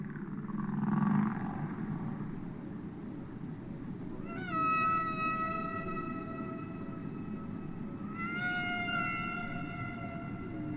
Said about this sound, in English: One that's had worldwide attention is the song of the humpback whale. That's apparently an acoustic reproductive display, probably produced only by males, and only in the breeding season.